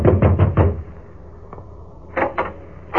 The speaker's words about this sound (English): so I took a fast distance to the home of the late George Grant. I knocked at the door.